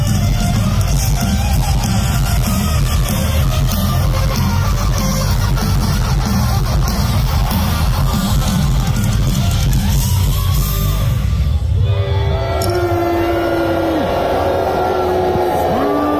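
A large crowd at the Louder Than Life Festival boos a performer during his set: a loud, sustained wash of jeering voices over a heavy low rumble, thinning after about twelve seconds as amplified, tonal vocal sounds emerge.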